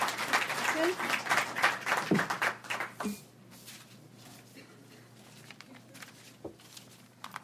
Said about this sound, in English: Please, round of applause for our speaker.